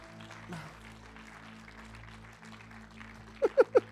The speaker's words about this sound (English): Come on, can we just clap to the Lord right now, Father?